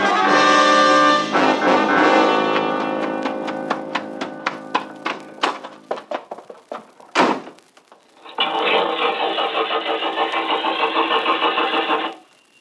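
A car engine sputters through a run of slowing, uneven chugs, goes quiet after a sharp clunk, then catches and settles into a steady, loud running rumble. No voices.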